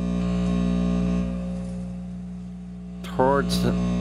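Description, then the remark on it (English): A steady, droning electrical buzz from a guitar amplifier, humming with layered harmonic tones for several seconds, then a brief, louder burst of crackly, voice-like noise near the end. “Second sound is guitar amp buzz, an amplifier buzz.”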